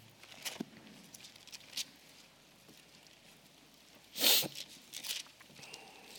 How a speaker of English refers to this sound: I love to hear the rustling of the pages. Glad you brought your Bible to church this morning.